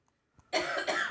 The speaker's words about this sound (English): She has more coughing.